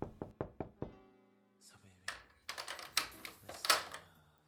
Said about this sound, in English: It's 3 p.m. and there's a knock on the door.